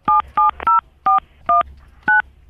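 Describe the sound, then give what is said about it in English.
Seven short dual-pitched DTMF keypad beeps as a caller punches an ID number in on a phone during a call, spaced unevenly over a low background hum, each tone clear and fairly loud, with no talking. “Don't punch it in on the phone.”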